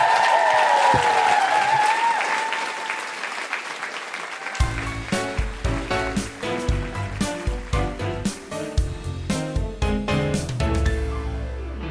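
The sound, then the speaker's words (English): A large audience applauds loudly with whoops and cheers. After a few seconds, rhythmic music starts and plays over the fading clapping. “Big round of applause for the incredible …!”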